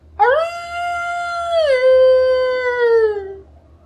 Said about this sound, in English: However, the wolf that is pursuing is still pursuing. And you hear it.